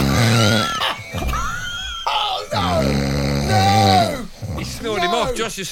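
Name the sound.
person imitating loud snoring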